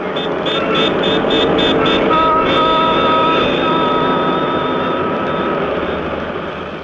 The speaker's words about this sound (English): There was the incessant, irritating drone of airplanes in the sky.